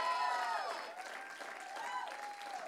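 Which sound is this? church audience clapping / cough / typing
church audience clapping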